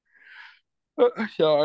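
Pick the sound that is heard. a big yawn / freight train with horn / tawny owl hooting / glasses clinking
a big yawn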